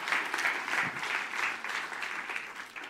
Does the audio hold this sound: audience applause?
yes